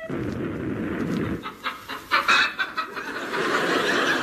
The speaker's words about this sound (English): That's no duck, that's a chicken. By God, sir, they're firing hens at us.